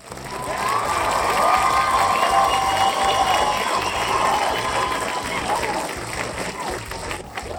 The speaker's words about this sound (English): Yes, we have a live studio audience today. I'm holding up signs that say cheer when they're supposed to cheer. So they're pretty good about it.